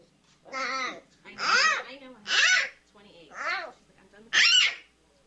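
A baby panda bear gives a run of five bleating, squealing calls with rising and falling pitch, loud and clear with short gaps between them; the cries sound almost like a human baby babbling.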